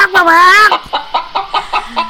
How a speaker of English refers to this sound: That's a rooster?